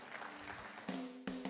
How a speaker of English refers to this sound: Give the Lord a big hand clap this morning.